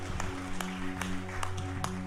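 An audience at Gateway Church claps together in a steady beat as a hand clap of praise to God before being seated, roughly two claps per second, over a dense wash of applause noise and a sustained low hum.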